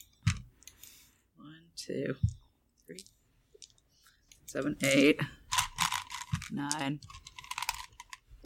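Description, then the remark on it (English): Dice clatter and click in quick, irregular bursts as a player counts out and rolls many dice across a surface for a logic plus skill roll in a game, with brief stretches of someone talking in between. “I gotta count out my 10,000 dice because of my 60,000 logic that I have.”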